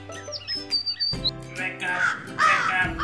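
bird, crow cawing

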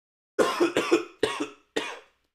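human body sound, coughing

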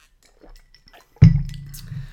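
food or drink, drinking water

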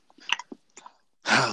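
food or drink, crunching on tortilla chips

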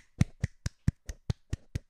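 human body sound, hands clapping into microphone

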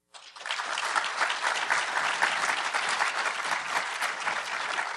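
crowd, audience applause

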